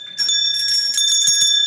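A bright bell rings with sustained, shimmering high tones and several quick repeated strikes, loud and close, with no voices.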